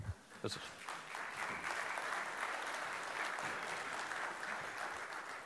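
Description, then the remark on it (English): A large group applauds steadily at a first church service, a dense wash of overlapping claps that starts with a few sharp hits and holds at an even, fairly loud level without any voices. “This is the first service. You should never clap. Don't clap.”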